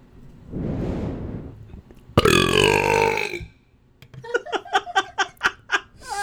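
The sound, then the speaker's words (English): A loud, drawn-out burp, first a low rumble and then a stronger croaking stretch, followed by a quick run of about eight short, rhythmic bursts of laughter. “She heard that burp through my headphones, though.”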